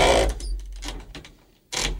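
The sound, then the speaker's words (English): A pair of Nike sneakers squeaking while walking: a few short, bright scuffs with a thin high squeal among them, in an uneven stepping rhythm, fairly loud and with no talking. “But I've noticed they're pretty loud. Like squeaking?”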